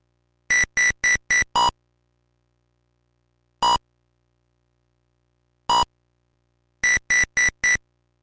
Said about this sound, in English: You know, just like a low beep for a card being placed on the table and a high beep if you lose or something like that. Maybe played in succession, but that's about all you get out of it, so nothing good with the sound there, really.